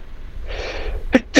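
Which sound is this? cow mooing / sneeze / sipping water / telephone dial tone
sneeze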